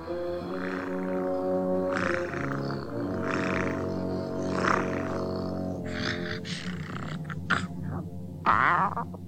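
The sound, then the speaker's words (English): A person imitates a cat, voicing Lucifer the Cat in Disney's 1950 film Cinderella, producing a run of drawn-out, wavering meows and yowls with sliding pitch, fairly loud and continuous, with a few sharper, breathier cries toward the end. “Yes, that wasn't a cat making those noises. That was her. It's a person.”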